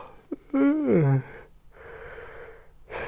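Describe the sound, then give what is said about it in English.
A loud yawn with a rising then falling voiced groan, followed by a long breathy exhale and another breath intake at the end; no talking. “That's one of those yawns that's so unpopular.”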